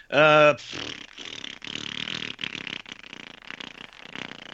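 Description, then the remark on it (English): A loud, buzzing mouth-made fart noise blasts out first, followed by several seconds of wetter, sputtering raspberry sounds, a voice imitating flatulence as a prediction for the Game Awards. “Okay, so you predict that there will be a lot of farting at the Game Awards.”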